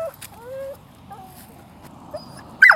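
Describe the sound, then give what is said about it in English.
A dog named Buddy whimpers in thin, high whines, then lets out one sudden loud bark near the end. “You don't usually bark like that.”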